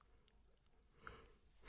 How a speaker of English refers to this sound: Excuse me, I'm yawning.